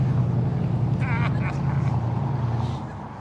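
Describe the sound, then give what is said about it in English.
A vehicle with a loud, deep exhaust rumbles steadily, then fades as it passes. A brief voice is faintly audible under the engine noise. “Usually I love giant exhaust, but I want it in my own truck, not driving by.”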